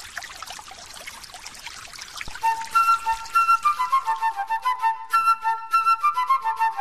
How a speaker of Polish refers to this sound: Napuszczaj wody!